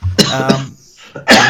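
A loud bout of harsh coughing: two quick hacking coughs, a brief pause, then another forceful cough, with no talking.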